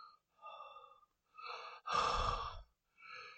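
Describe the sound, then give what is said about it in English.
A voice imitates heavy, raspy breathing down a phone: four drawn-out breaths in a slow rhythm, the third loudest and harshest, alone with no talking. “And she just hears this heavy breathing down the phone.”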